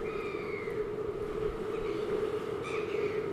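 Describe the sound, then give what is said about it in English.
Steady ambience on the Wellington waterfront: a constant low hum and rumbling, howling wind noise, with faint, drawn-out squawking seagull cries rising above it at the start and again near the end. “You get this hum of noise knitting together. It's made up of these squawking seagulls and that iconic howling wind.”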